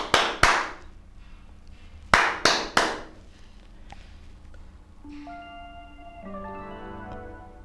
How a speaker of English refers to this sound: I'll click my record button. Okay, and I'll just clap.